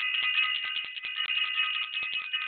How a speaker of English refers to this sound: I want to ring the bell for Self-Invested.